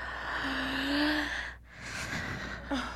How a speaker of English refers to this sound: Maybe it's the weather, or perhaps it's the hour that makes Baby Dumpling yawn.